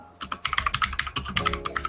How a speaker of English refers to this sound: I just realized that we did not look up an actual definition for cringe culture. Wait, I gotta look it up so they can hear the keyboard things.